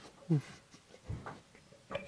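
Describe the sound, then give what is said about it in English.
A big dog, a four-year-old female Great Dane Mastiff mix named Maya, three quarters Great Dane and a quarter Mastiff, lets out a few short, deep grumbling vocalizations, spaced irregularly with brief quiet gaps between them. “She's a Great Dane Mastiff mix.”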